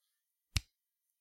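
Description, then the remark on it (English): A single crisp finger snap, a sharp bright click that decays almost at once. It sounds alone, with no talking and near silence around it. “Let me snap my fingers like Thanos.”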